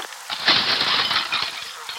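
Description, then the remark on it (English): Window glass shatters in a loud burst, followed by a bright, crackling spray of tinkling shards that keeps rattling for a second or more before trailing off. “I don't wish to slice myself open on this glass.”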